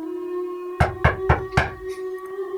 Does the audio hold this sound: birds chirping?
no